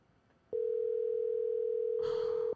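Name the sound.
phone call ringing tone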